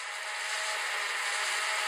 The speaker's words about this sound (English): Isn't that soothing? You okay? That's the garbage truck sounds.